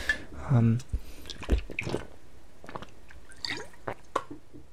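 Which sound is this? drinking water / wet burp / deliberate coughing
drinking water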